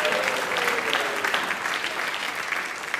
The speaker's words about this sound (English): Wow, dad, son, perfect. Let's bring him up with a round of applause.